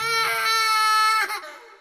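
A baby cries in one long, loud, high-pitched wail that holds steady, then breaks and trails off into a softer whimper. No talking.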